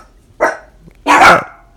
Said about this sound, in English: Hey, dog, stop barking.